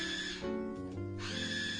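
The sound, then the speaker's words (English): A roommate's food processor mincing food whirs steadily with a buzzing motor whine, its pitch dipping and shifting a couple of times as it runs. No one speaks. “My roommate's running a food processor.”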